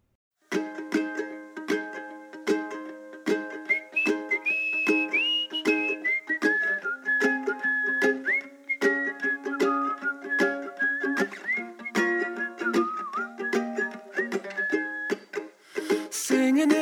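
A folky song by a Canadian band, played on CFUV 101.9 FM in Victoria, opens with a bright whistled melody gliding over steady, sustained instrumental accompaniment, playing continuously at an even, moderate loudness with no singing.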